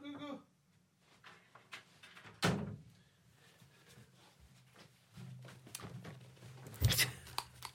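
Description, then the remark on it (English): A door is handled and locked: a loud thunk, scattered clicks and rattles, then a second sharp knock as the latch catches, over a low steady hum. “Right, give me 2 seconds, I'll lock the door.”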